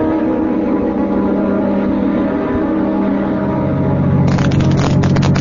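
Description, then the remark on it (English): A car engine hums steadily from inside the vehicle as it drives the route toward a plant to look for a missing man, a continuous low rumble with road noise that grows slightly rougher near the end, no voices present. “Well, my deputy and I'll drive out over the route between here and the plant and have a look for him.”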